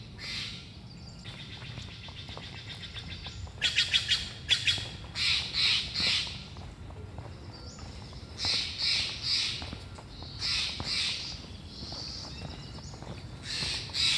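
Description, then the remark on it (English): Outdoors in a regular local park on a midweek day, birds call repeatedly with harsh, squawking bursts and rapid chattering phrases, coming in clusters over a low, steady background rumble; no one speaks. “You know, it's fun just to stand in one spot and listen to all the birds and all the activity.”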